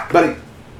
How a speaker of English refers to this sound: Sorry about that. My dog was barking a little bit. Scared me to death.